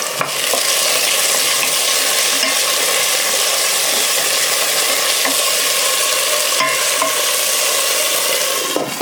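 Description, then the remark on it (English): About 2 cups of diced onions sizzle steadily in ghee in a stock pot for a Thai curry, a dense crackling hiss filling the whole stretch, with occasional scraping clicks as a utensil stirs through the pan. Fairly loud, no voices. “So I started off with about 2 cups of diced onions, and I'm frying them up in a pan in a stock pot with some ghee.”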